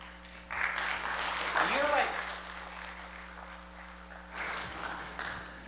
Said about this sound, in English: Don't applaud, you haven't heard me yet, so don't get all excited here.